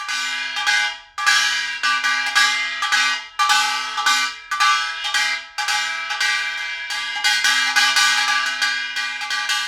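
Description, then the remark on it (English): A small Korean gong, a gingari, struck with a mallet in a loud, uneven rhythm, each bright, clangy hit ringing with a shimmering metallic tone before the next lands. No voices. “was the gingari and the mallet that you used to drum on it with.”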